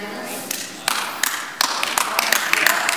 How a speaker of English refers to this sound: Last time I checked, see, we don't get a lot of claps on that.